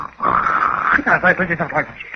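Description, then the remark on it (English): Loud, exaggerated snoring from Bumstead, sound asleep, apparently voiced by a person: a drawn-out raspy tone followed by a quick series of rhythmic, gurgling pulses, with no other talk. “What a sound. Well, like a giraffe swallowing a roll of sandpaper.”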